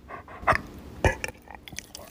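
A dog lets out short, gruff burps after being given peanut butter: two louder abrupt bursts about half a second apart, surrounded by softer smacking, mouth-like noises, with no one speaking.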